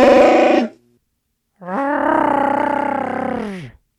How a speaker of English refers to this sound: The final ingredient in this magical Chewie sauce is his roar. That's your cue.